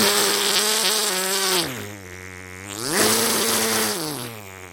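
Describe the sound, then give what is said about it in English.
A voice imitates a chainsaw with a continuous buzzing drone, its pitch dipping low midway as if bogging down, then revving back up before easing off again. “I had to do the chainsaw.”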